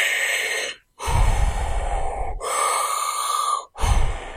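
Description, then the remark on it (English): Dogs in the background breathe heavily and noisily, a few long rasping breaths separated by brief pauses, fairly loud, with no talking over them. “There's the dogs. They're in the background.”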